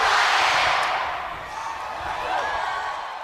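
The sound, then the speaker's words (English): A wrestling crowd chanting, a loud, dense wall of voices that holds steady for about three seconds, dips briefly midway, then swells again, with a few thuds underneath. “You can see now the crowd, they play a huge factor in a wrestling mm-hmm.”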